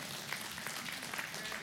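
A crowd applauding: dense, steady clapping from many hands, a continuous hiss-like patter at an even, moderate level for the whole stretch, with no voices over it.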